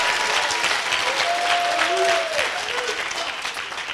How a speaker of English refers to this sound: Come on, somebody. You got to give Jesus a clap offering. Am I in a live church or am I in a dead church?